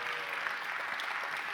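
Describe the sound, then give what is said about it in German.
Steady applause from an audience, a dense even patter of many hands clapping at a constant level throughout, with no voices standing out. “Jetzt kannst du selber einen Applaus geben.”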